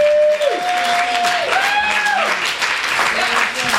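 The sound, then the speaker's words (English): A concert crowd claps steadily and loudly throughout, with long rising and falling whoops and whistles cutting through the dense applause, making noise for the band to play one more song. “I think if we make enough noise, they'll play one more song.”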